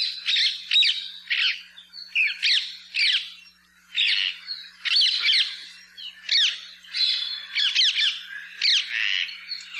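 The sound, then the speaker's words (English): Harsh, loud squawks from a flock of birds ring out in rapid, overlapping bursts with barely a pause, a noisy chorus of screeching calls with no one speaking. “Perhaps you've heard the loud squawks of these birds when in flight or at their roost.”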